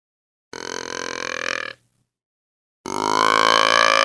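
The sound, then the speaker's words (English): Two blasts on a deer grunt call, blown at low volume with the call cupped and choked by hand, each a buzzy, reedy low tone rich in overtones; the first lasts about a second, the second comes stronger and is still sounding at the end. “And so I know how that call works from a low volume perspective.”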